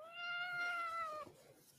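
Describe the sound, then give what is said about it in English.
A single drawn-out cat meow, steady and fairly loud, lasting about a second before cutting off into quiet room noise. No one speaks. “say meow.”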